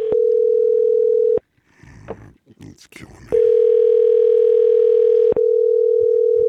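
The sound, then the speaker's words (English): A loud, steady phone ringing tone in long bursts, one briefly broken as a double ring, with a person speaking in the short pause between the bursts. “Why is it double ringing?”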